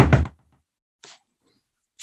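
A loud knock on a door, followed by a softer knock about a second later and another at the very end, each a short hollow thud separated by silence.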